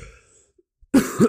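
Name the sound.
cough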